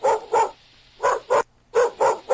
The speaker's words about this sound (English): Dog. A what? A dog. Congratulations. That was a tough one. That's the easiest one I've that ever heard. That was really tough. But now here comes the hard question. This dog is actually a certain breed that's barking, and it is a puppy of this breed.